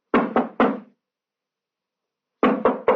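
Two sets of three firm knocks on a door by police, loud, each burst quick and evenly spaced, separated by a pause of about a second and a half of silence.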